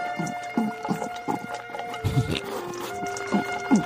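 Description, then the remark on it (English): A dog named Ursula eating a bowl of food, with repeated wet chomping and smacking sounds in a quick, steady rhythm, over a faint constant hum. Nobody speaks. “Ursula, stop eating for 1 second, please.”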